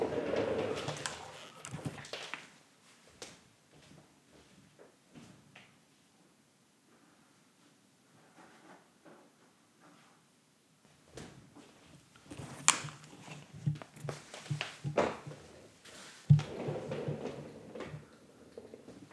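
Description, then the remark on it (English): A curtain is pulled and adjusted, with bursts of fabric rustling and a sliding swish, then a quiet lull before more rustling and a couple of soft knocks near the end. “I'm going to fix one of the curtains.”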